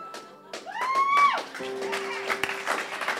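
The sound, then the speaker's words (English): Scattered, hesitant clapping from an audience builds unevenly into a thin patter of applause, mixed with a brief rising whoop and a sustained tone in the background. “Well, either clap or don't, you know. Let's make up our mind.”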